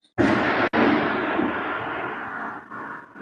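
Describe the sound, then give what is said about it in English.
A loud, sudden crack of thunder from a heavy lightning storm in Florida bursts in and rolls on as a broad, rumbling roar that slowly fades over a few seconds, with no voices. “Wow, did you just hear that lightning?”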